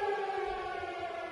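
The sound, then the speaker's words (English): A steady, droning air raid siren sound effect wails continuously at a sustained pitch, loud and unbroken for the whole moment, with no voices over it. “I think atomic bomb siren is good.”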